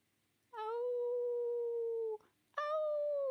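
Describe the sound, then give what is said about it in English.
Long, steady howling from a pack of about 20 coyotes around a tent at night during rain, with no talking: one sustained, fairly loud wail, a brief break, then a second howl starting up clearly, each holding a single pitch. “20 coyotes.”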